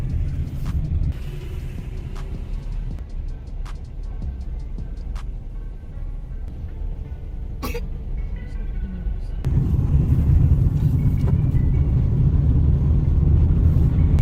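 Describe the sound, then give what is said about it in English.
Steady low engine rumble of a car driving to the next gasoline station, with occasional clicks and brief knocks; the road noise swells louder partway through. Faint talk may sit under it. “Guys, we are going to next gasoline station.”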